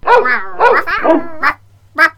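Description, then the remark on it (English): Several dogs on a pond bank barking back at a squawking duck, in quick bursts, about five loud barks in two seconds, with brief pauses between them and a faint hum underneath. “The dogs all barked back.”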